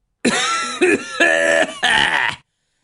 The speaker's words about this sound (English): Forgive my cough. So definitely a smoker over here. Anything, I'm a vapor, not a smoker.